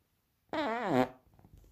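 A single loud fart from someone who had eaten beans, about half a second long, with a buzzy, wavering pitch that rises and falls before trailing off into quiet background noise. No one speaks.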